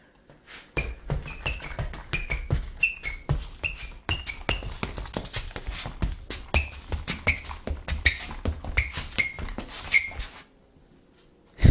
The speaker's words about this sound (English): Oh, my shoes are squeaky. I feel like I'm playing basketball.